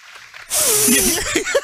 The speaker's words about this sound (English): He went in for a sniff.